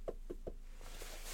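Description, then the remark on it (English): Three quick knuckle raps on wood as someone knocks on wood, evenly spaced, followed by a couple of softer, fainter taps and a rising hiss of background noise. “I haven't gotten a nail in my tire, knock on wood. Where's some wood here?”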